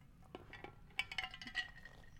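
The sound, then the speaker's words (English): Someone takes a quick sip of water: a few light glass clinks, then short, soft slurping bursts over a low background hum, with no talking. “I gotta take a little sip of water.”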